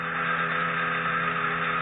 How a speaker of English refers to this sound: It's a sound projector, Miss Lane. Beams the sound to just the spot I want. Ready now. Watch the bottles.